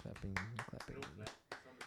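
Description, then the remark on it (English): Several sharp hand claps ring out at an uneven pace, fairly loud, while voices talk over them throughout. “I'm clapping.”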